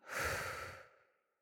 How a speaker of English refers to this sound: So breathing in. Pause. And breathing out.